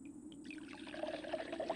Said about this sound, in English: He's got a bottle with him. He's pouring it on the egg.